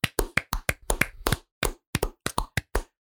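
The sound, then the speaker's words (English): A few hosts clap together in a quick, uneven burst at the end of a bracket, about a dozen sharp claps with a brief pause partway through and no talking. “And as we do at the end of every bracket, we're going to go ahead and we're going to clap it out.”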